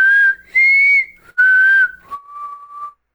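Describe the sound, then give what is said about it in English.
Someone whistles a short four-note tune, clear and fairly loud, the notes rising then stepping down, with the last note held longer and softer. No talking. “Can you do the Hunger Games whistle? Remind me how that goes.”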